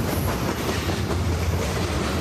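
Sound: train rolling on tracks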